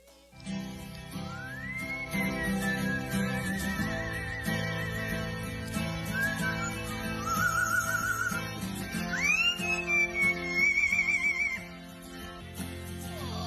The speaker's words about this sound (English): Now, by the way, as you get ready for this audio, I want to say the bird is the one whistling. Oh, okay. Right? Man is strumming a guitar. This is a real bird. Upstaging the man playing the guitar. Bird is the one whistling.